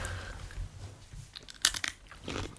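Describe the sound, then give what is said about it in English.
Crisp crunches as someone bites into crunchy food and chews, with a sharp bright burst partway through and a few softer crackly chews around it, no talking. “Are you done crunching?”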